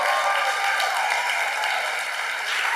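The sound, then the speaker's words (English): Audience applause as a man comes up to speak at a morning gathering: a steady, dense wash of many hands clapping at once, bright and crackly, holding an even loudness throughout with no voices on top. “So we'll start with a big round of applause for my friend”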